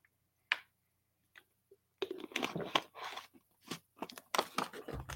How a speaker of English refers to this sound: Now, before I share with you guys the third component of the good news of the kingdom, I'm just going to have a sip of water.